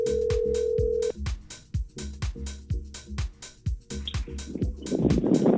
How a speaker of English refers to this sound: It's not ringing. Oh, my gosh. It's ringing.